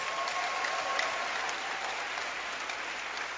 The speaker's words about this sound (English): Amen. And clap your hands for Jesus.